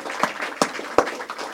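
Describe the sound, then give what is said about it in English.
Hand clapping: three sharp, loud claps land at an even, unhurried pace over a soft, scattered wash of lighter applause from a small audience. “Give my hand clap.”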